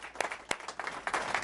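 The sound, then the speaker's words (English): A brief burst of applause from a group for someone going to New Zealand on October 19th, dense overlapping claps with a few sharper individual claps standing out, fairly quiet overall and swelling slightly toward the end. “Give a round of applause, guys.”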